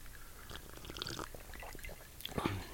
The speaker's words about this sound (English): Okay, here we go. Sips.